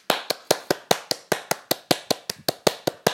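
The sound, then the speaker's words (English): Steady hand clapping for football manager Mourinho, about fifteen sharp, crisp claps at an even quick pace, roughly five per second, with no voices alongside. “Let's just take a second to clap for Mourinho.”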